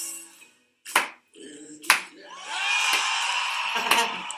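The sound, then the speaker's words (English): A crowd at a live opening-night concert erupts into loud, sustained cheering and whooping, with sharp claps or smacks punctuating it. The roar builds after a few scattered bursts and holds steady to the end. “And the crowd's, of course, going completely berserk.”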